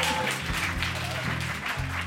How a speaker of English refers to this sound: So, let's listen to Jay's performance and find out how the world is an awful, awful place. So put your hands together for Jay Foreman, everyone!